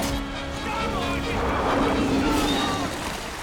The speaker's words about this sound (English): So you hear that as Quint's yelling. You hear the shark as it comes across the camera with the air escaping and water rushing in. It's going to make that sound.